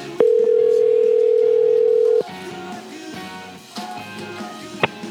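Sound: telephone ringback tone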